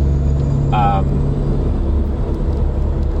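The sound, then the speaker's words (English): A loud, close truck engine rumbles steadily throughout, a deep continuous drone with a brief high-pitched whine near the start. “Next to a very noisy truck.”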